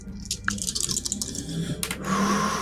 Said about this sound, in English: Go ahead and roll three dice.